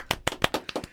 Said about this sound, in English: Can we just get a round of applause?